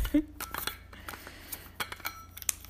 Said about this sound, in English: Hang on one second. I'm just going to take a sip of my water because my throat is getting dry.